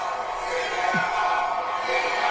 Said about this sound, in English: So again, the crowd can't hear him because they're just chanting CM Punk so loud. Yeah. I don't know why they were chanting CM Punk at that moment.